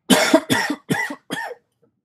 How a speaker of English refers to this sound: Oh, what is with this fake cough? Listeners know this fake cough's been going on for 3 months now. Pretty sure it's cancer. I'm pretty sure it's time to move on. Make up a new ailment.